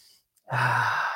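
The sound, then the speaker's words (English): A single long, deep inhale drawn in through the nose, with a steady airy rush and a low resonant hum lasting under a second after a brief pause. “Let me actually breathe through my nose because I can do that now.”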